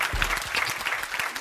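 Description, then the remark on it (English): An audience applauds steadily, many hands clapping in a dense, even patter at moderate volume with no voices rising above it. “Y'all clap better than that.”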